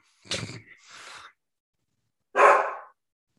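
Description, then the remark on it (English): Dogs, a Labrador and a dachshund, bark excitedly as the owner's wife pulls up, two quick barks followed by a louder single bark after a short pause, with no one talking. “My wife's pulling up, so the dogs are going nuts.”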